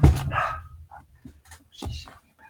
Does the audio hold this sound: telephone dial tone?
no